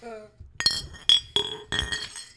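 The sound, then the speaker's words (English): Drinking glasses clink together in a toast several times in quick succession, each tap bright and ringing, fairly loud, after a brief voice at the start. “Let's clink our glasses to that.”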